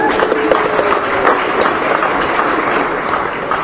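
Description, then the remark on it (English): A comedy-show crowd in Schomburg breaks into sustained applause for people celebrating birthdays, a dense, steady crackle of many hands clapping at once, loud and even throughout with faint voices mixed in underneath. “Clap it up for all those people.”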